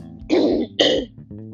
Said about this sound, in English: Sorry, my apologies. I didn't mean to cough like that